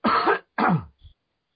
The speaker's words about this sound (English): Excuse me, I got a cough again.